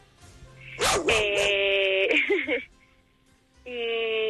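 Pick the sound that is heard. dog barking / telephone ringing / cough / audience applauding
dog barking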